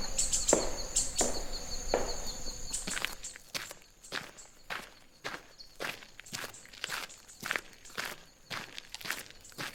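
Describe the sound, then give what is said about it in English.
Steady footsteps walk at an even, unhurried pace, each step a crisp tap, following a brief stretch of high chirping and a few scuffs at the start. “The walk would do me some good.”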